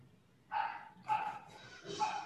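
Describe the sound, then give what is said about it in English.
A pet dog, Lulu, barks loudly three times in quick succession from about one room away, each bark sharp, with brief pauses between them and no speech. “sorry, my dog's barking.”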